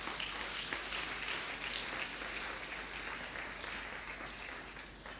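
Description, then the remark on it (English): A church audience of many people claps their hands for themselves in a steady, dense wash of applause that tapers off only slightly toward the end. “Clap your hands for yourselves.”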